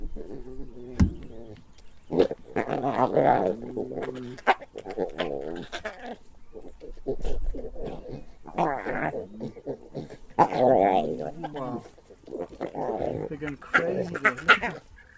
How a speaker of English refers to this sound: So Alex sent us this video, and it's basically the cutest thing ever. It's like lion cubs playing around and suckling with their mum.